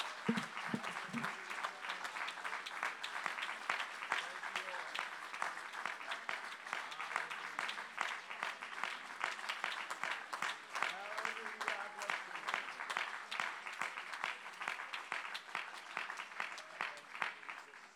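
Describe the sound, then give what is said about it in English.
A church audience claps its hands unto the Lord and shouts, steadily and loudly for about eighteen seconds, dense overlapping hand claps mixed with scattered shouts and cheering voices, holding an even, sustained level throughout. “Now, would you, for about 5 seconds before you're seated, to 10 seconds, would you just clap your hands unto the Lord? Would you shout in this room?”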